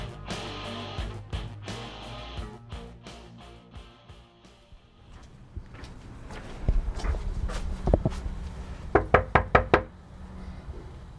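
Footsteps approach, then a burst of firm knocks on a wooden door, two quick sets of raps close by, followed by a pause and quiet shuffling.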